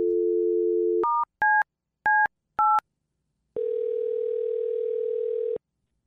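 A steady telephone dial tone, then four quick two-tone keypad beeps as a number is dialed, followed by a longer steady ringing tone, as a radio prank phone call is placed on Q102. Clear, with no voices.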